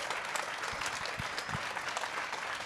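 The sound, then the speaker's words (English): A crowd at a storytelling event claps steadily for a few seconds, dense overlapping hand claps at a fairly even level, with no voices over it. “how about one more round of applause for Joel Wayne Thanks and Mattthew RK Haynes”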